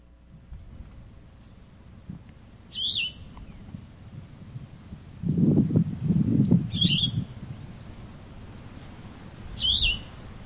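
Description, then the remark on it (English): A vireo sings on the prairies, where a red-eyed vireo and a pair of warbling vireos were heard: three short, bright phrases separated by long pauses, while a low rumbling noise swells briefly in the background midway through. “I heard a single red-eyed and a pair of warbling vireos, but no yellow-throated.”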